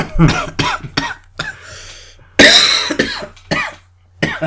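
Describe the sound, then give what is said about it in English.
Someone coughs repeatedly in a rough, uneven series of short bursts, with one especially loud, harsh cough about halfway through before a few smaller coughs follow. “Real cough.”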